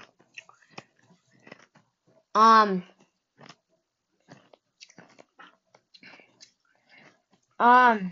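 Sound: crunching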